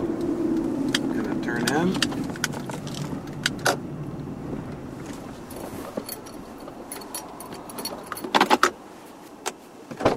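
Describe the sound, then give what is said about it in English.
A car engine rumbles low and steady as the vehicle pulls away after waiting almost three minutes for a train to pass in Bremen, heading to a used trailer, with frequent sharp metallic jingles and rattles from inside the cabin throughout. “I wait almost 3 minutes on the nose for the train to pass, then take off again on the way to the used trailer.”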